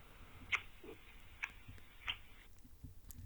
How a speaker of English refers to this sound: That was just somebody either chewing really loudly or, you know, that kind of thing was going on.